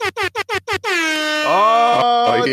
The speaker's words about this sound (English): I'm gonna give myself some air horns. Let me see.